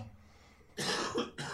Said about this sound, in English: that was a cough. I even heard that, even though you pressed your panic button.